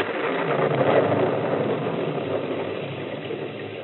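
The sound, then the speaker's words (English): A car engine idles steadily, a continuous mid-level rumble that holds evenly for the whole stretch with no voices over it. “We got back in my car, wet and shivering,”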